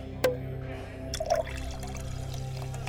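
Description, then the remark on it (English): Champagne poured into a glass, opening with a sharp glassy tick, then a brief liquid gurgle and soft fizzing, quiet over a steady low background hum. “Just a glass of champagne.”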